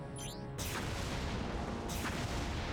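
Two heavy cannon blasts go off about a second and a half apart, each a loud, sharp boom that rolls into a long rumbling tail, with a brief whooshing tone just before the first.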